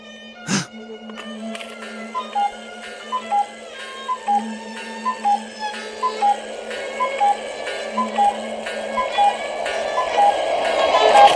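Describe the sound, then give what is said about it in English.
A cuckoo clock ticks steadily in a regular rhythm, fairly crisp, over a faint transistor-radio hum and tonal background, with no one talking. “The transistor radio sound and the cuckoo clock and the violin playing are all there to add a kind of surreal landscape that for me reflects the surreal nature of dreams.”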